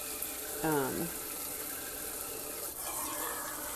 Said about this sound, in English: I'm sorry, let me focus on this because apparently it takes a lot of my brain power to fill these cokes with water. And I just swish and pour it out.